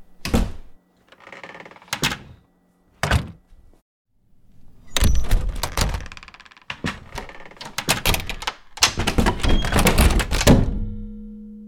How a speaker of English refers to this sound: It has a finality to it, and when it's shut and we tap it, it's still fairly hollow. So I'm going to show you three different doors and how they sound differently. A big deal is how doors sound when they shut.